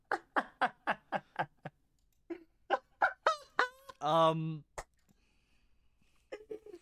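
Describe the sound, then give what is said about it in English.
A person imitates bird calls: a quick series of clucking squawks, then warbling whoops and a loud, drawn-out honk, followed by a sharp click and quiet murmuring. “Just listen to me make freaking bird noises.”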